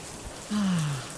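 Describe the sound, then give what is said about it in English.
Steady hiss of looping rain sounds played from a smart speaker for sleeping, soft and continuous, with a brief low hum sliding downward partway through. No one speaks. “But for some reason, recently, we switched to rain.”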